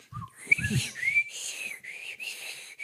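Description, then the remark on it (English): A person imitates with their mouth the whistling of an off-brand Fleshlight sex toy through a hole at its top, a thin wavering high tone sliding up and down over a few seconds, moderately loud, with some breathy low thumps at the start. “So when you were using it, it would whistle.”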